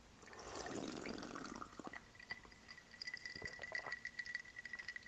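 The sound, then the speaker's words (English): A long, slurping sip of cold sake on ice, followed by several light, sharp clinks of ice cubes knocking against the glass. Fairly quiet, with no talking. “I hope you can hear it was a big sip. Those are ice cubes.”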